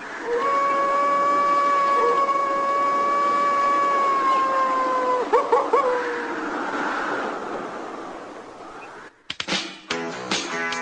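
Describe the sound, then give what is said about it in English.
Played-back opening of the trailer for the Teen Wolf movie with Michael J. Fox: a long, loud, sustained howl-like tone with layered harmonics, a few sharp bursts midway, then an abrupt cut into choppy, different-sounding audio near the end. “would you like to hear the trailer for said Teen Wolf movie?”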